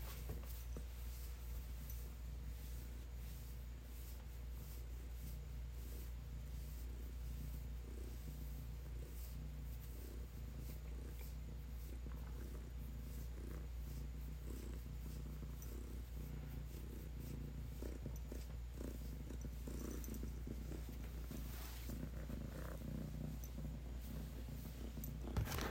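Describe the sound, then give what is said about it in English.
A female cat purrs loudly, steadily and continuously, a low rumbling drone that holds without pause for the whole stretch, with no voices over it. “You guys hear her purring?”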